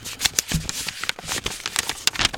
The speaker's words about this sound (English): Opening the envelope.